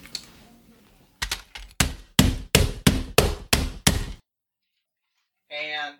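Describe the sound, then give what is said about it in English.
A hammer smashes a VHS tape with about nine loud blows in a steady, quickening rhythm. Brief silence follows, then a short voiced sound. “That's it smashed with a hammer.”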